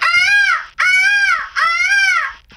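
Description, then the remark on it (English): A girl's voice imitates a peacock call: three loud, shrill, wailing cries in quick succession, each rising then falling, with no other talk. “This girl makes mimicking animal sounds.”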